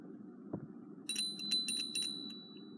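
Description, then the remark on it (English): A bright, high meditation bell rings several times in quick succession, its clear tone lingering over a low, steady background hum. No one speaks. “So I'll cue you in the visualization with the clearing of the energy using the bell.”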